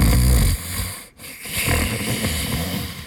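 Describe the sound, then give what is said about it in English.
Loud, rough snoring from a drunk man curled up asleep in a muddy puddle: a heavy rattling snore, a brief gasping pause, then another drawn-out guttural snore rumbling on. No voices. “Within a few seconds, the bog tech was curled up in the muddy puddle, snoring loudly.”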